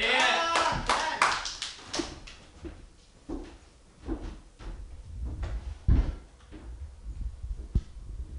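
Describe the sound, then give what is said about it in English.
Audience applause for a comedian coming to the stage bursts out loudly for a couple of seconds, then thins into scattered, fading claps with a few murmuring voices underneath. “Give it up for your next funny man”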